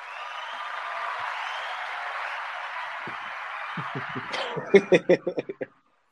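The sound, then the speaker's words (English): A sustained round of applause from a group welcoming a guest fills the first few seconds, then thins into a handful of separate claps or laughs before cutting off abruptly. “We want to give you a round of applause real quick.”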